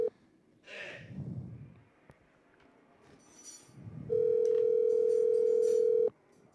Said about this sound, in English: Pick up, baby. Answer up that phone. Come on.